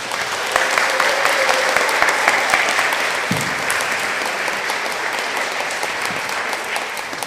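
Sustained, dense applause from a sizeable audience for the school music group fills the whole stretch, steady and fairly loud with no one speaking over it, easing only slightly toward the end.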